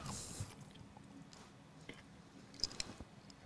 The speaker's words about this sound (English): Some loud ass eater. I didn't even want to chew.